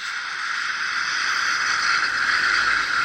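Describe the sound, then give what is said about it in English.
A steady, hissing shush made with the mouth as white noise to check for clicks in a recording in Audacity, held evenly for about three seconds at a moderate level with no breaks and no speech. “Hold on, I'm going to make some white noise now, and I just want to see whether it clicks.”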